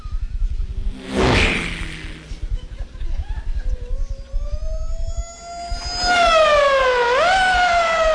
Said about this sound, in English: fast car. You watch this. Here he comes.